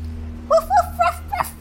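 puppy barking

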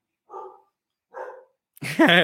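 dog barking

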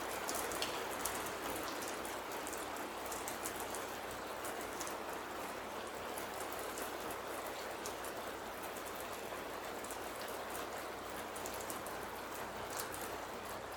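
rain falling

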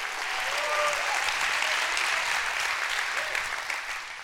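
audience clapping hands

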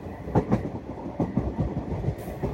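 train passing on rails

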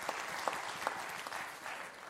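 audience clapping

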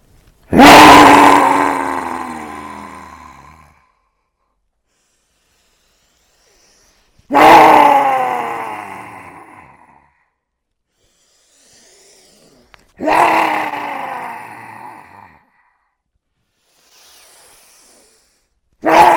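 forceful rhythmic breathing

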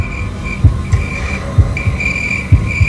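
heartbeat sound effect

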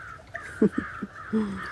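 raven cawing

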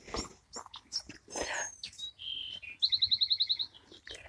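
wren singing

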